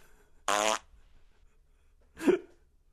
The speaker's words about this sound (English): There we go. There's a couple of farts.